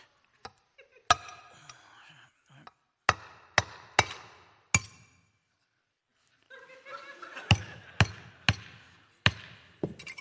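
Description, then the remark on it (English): About ten sharp, hard hammer strikes as a nail is driven into a pane of glass to make a little hole in its corner, knocked out in irregular bursts with a pause midway; the glass ends up breaking. Laughter and murmuring voices rise and fall between the blows. “I've got a hammer and nail here. I'm going to put the nail through the glass”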